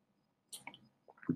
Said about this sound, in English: But it's important to drink water. If you're listening to this, I just drink water. It's really important. I'm trying to do as much as possible of that.